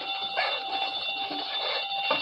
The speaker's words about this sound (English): Safe connected with burglar alarm. Yes. I'll have to hurry. The guard will be here any minute.